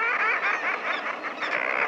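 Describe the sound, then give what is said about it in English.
A nesting colony of common murres calling from narrow ledges high on a steep sea cliff on the Pacific coast during nesting season, many raucous, overlapping growling voices merging into a dense, continuous din that stays loud throughout, with no talking. “The voices belong to birds, to a nesting colony of common murres, standing on narrow ledges high on the steep face of a sea cliff.”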